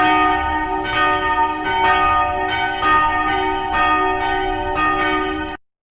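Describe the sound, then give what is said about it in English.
Church bells ring steadily and loudly, with repeated strikes roughly every second layering into a rich, sustained wash of overlapping tones before stopping abruptly. “And because of the church bells, it's time for a hectic Sundays, hectic church here.”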